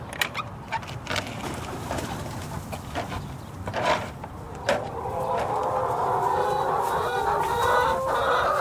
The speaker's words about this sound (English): But I'm here for the chickens.